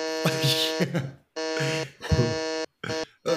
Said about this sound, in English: If you hear this, ladies and gentlemen, Seth is not recommending. Oh, that's Seth hitting the alarm.